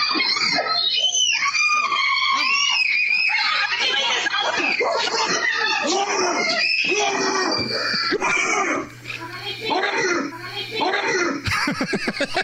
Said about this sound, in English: the bear shows up in the backyard of a family having a get-together, and you hear, like, the mom and the kids running around screaming, but then the dad comes in, saves the family, saves the dog, and starts growling at the bear.